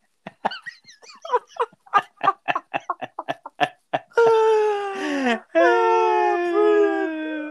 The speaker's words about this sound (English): the dog continued to chase it after it and pick it up. To make matters worse, another dog joined in the game in a bit to steal the toy.